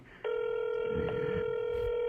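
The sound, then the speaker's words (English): After a brief quiet moment, a steady electronic phone tone starts abruptly and holds unbroken and loud, as an outgoing phone call rings while waiting for the other person to pick up. “Hey, Andy, you better be in pick up the phone.”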